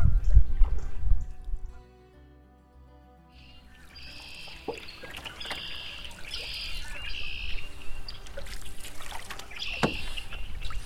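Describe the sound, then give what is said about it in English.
Several geese honk in a rapid, repeated series of loud calls as they fly off downstream, after a brief quiet stretch, with soft water and paddling sounds underneath and no one speaking. “And those stupid geese who keep flying downstream and then shocked when we come around the corner.”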